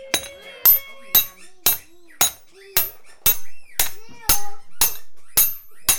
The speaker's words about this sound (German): Der Schaffner und der Lokführer helfen ihm dabei, denn so ein Rad von einer Lokomotive ist ganz schön schwer. Der Schaffner und der Lokführer halten das neue Rad und der Mechaniker schlägt mit einem großen Hammer das neue Rad auf die Achse.